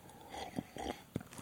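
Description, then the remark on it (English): Someone sips water, with a few soft, brief gulps and swallowing sounds spaced out over a quiet moment, no talking. “It's like with every sip, and I'm going to drink some water now.”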